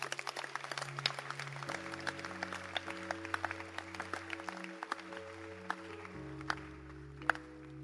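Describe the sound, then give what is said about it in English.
An audience claps steadily for several seconds, a dense patter of many hands at moderate volume, while sustained low keyboard chords hold and shift beneath the applause. “Clap your hands again, please.”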